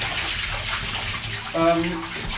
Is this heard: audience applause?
no